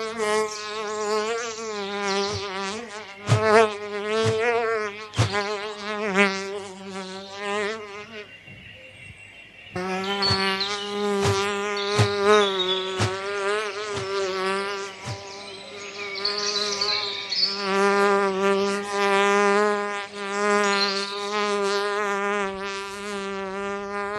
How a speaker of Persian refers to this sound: آنچه که شنیدید این صدای وزوز مگس مربوط بود به فیلم The Fly، فیلم کوتاه انیمیشنی از کشور مجارستان که در سال 1981 جایزه اسکار رو برد و ساخته پرنس رفیوز بود